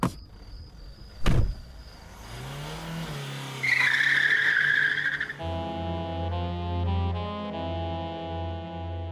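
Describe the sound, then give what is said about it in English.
A car engine revs up after a dull thud, then tires squeal loudly in a sharp skid for about a second and a half before the car settles into a steady idling rumble. “I'm stopping the car.”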